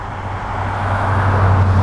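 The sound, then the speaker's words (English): Steady traffic rumble from cars on a residential street lined with trees and houses, with a low engine drone that swells slightly as a car seems to approach; no one speaks. “Except for this idiotic street with these idiotic cars.”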